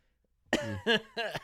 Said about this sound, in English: That was not a fake cough.